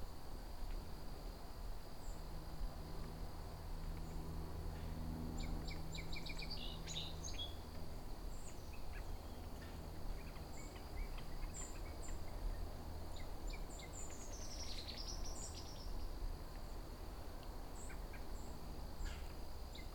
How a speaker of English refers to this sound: got a hermit thrush in front of me here. And a yellow rump warbler.